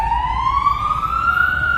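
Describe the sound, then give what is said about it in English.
A police car siren wails steadily, its pitch sliding slowly upward over a low rumble of traffic, loud throughout, with no one talking; the police car accelerates away through a red light near a city centre. “Another police car. Oh my gosh. I wonder what's happening. Off it goes.”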